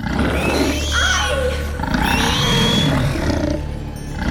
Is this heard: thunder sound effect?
no